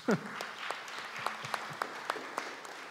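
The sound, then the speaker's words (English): An audience applauds with a steady, dense patter of many hands, a few sharper individual claps standing out at a moderate, even level throughout. “Let's just applaud these people, I think.”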